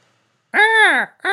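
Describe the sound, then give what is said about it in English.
A person imitates a hawk's cry with a drawn-out, rising-then-falling vocal screech lasting about half a second, followed by the start of a second cry after a brief pause. “Is that a hawk? Is that how a hawk sounds?”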